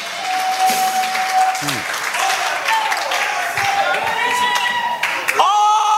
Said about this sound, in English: Clap.